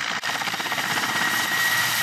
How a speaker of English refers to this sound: In their battle against Russia, Ukrainians are using the Mi-8, a medium twin-turbine helicopter equipped with unguided missiles. The multipurpose Mi-8s can also transport cargo and fight fires